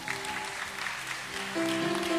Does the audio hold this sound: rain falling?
no